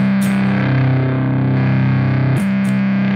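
A loud, heavily distorted electric guitar chord played through a pedal being tested sustains with a thick, buzzy drone, then is abruptly re-struck near the end with a brief dip and sucked-out attack, as if gated.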